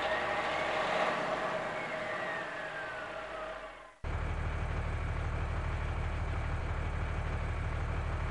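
A heavy snowplow truck engine is started and driven, roaring with a whining tone that slides downward, then cutting abruptly to a steady, deep rumbling drone as the plow keeps running in a blizzard. No one speaks.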